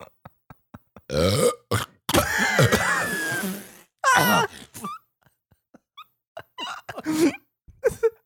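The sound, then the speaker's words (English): A loud, drawn-out burp after drinking soda, with a deep, rumbling croak that wavers in pitch for a couple of seconds, followed by a few shorter gurgling belches, with small clicks before it and no talking. “It sounded like it came up from the ocean.”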